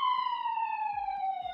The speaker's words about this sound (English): Ignore that siren.